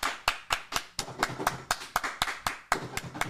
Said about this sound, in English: Round of applause, please, for the second live show.